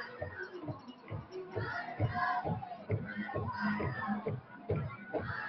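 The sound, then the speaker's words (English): A football stadium crowd at a cross-town rivalry game roars steadily, a dense wash of cheering voices with a rhythmic, repeated thumping pulse running underneath, loud and continuous throughout. “Crowd is fired up here.”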